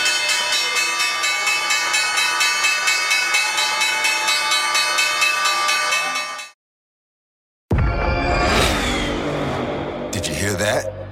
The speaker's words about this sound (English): That's what an estimated 500 horsepower sounds like.